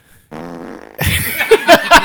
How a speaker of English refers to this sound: It's the first time I've used that on the air. It is. I'm impressed that we've gone 16 episodes and you haven't used a fart noise. I use that one a lot.